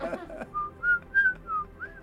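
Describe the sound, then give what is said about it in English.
A person whistles a short, slightly wavering tune of about five separate notes, clear, right after a brief bit of voice at the start. “I can't whistle because of kombucha. That's not the right song.”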